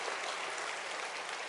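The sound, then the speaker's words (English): A crowd applauds with dense, steady hand clapping, many hands overlapping into a continuous bright patter at an even, fairly loud level with no voices. “So get a lot of hand clap.”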